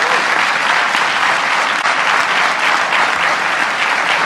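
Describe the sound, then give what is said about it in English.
Loud, sustained applause from a crowd in a played recording, a dense steady wash of many hands clapping at once for about four seconds with no voices standing out. “Look how she claps.”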